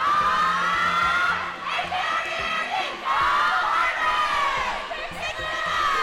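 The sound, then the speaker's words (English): A large group of girls screams and cheers continuously, jumping up and down at the edge of a swimming pool for their teammates in the relay, shrill overlapping shrieks rising and falling in waves, loud and echoing. “The girls are screaming. They are jumping up and down at the edge of the pool, cheering and shrieking for their teammates in the relay and during all the heats.”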